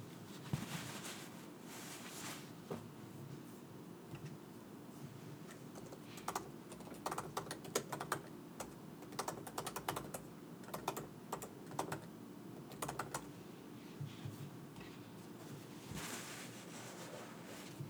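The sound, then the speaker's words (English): Quick, irregular clicking of someone typing up a short grocery list on a computer keyboard, with bursts of keystrokes over a steady background hiss. No voices. “I just remembered a couple things I need to get from the grocery store, so I was just typing those up real quick.”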